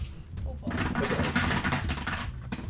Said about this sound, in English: Excuse me, I need to grab a whole lot of dice.